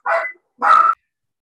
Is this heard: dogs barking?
yes